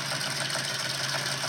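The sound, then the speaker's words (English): A Ford car's engine idles steadily, a continuous mechanical hum with a faint rhythmic knock running through it and no voices over it. “No, it's a car. It's a Ford something.”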